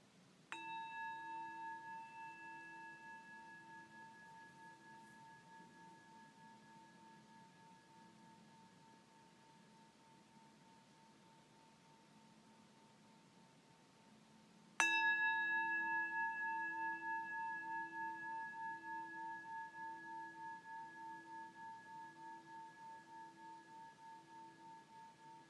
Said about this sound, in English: This last bell, use the sound of the bell to begin to focus your attention. Focus, focus.